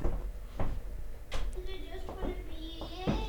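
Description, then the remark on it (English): A door is banged several times in a loose, uneven rhythm, each thud sharp, with muffled voices and background noise in between. “You owe me a new door now, too. Go on, do it again.”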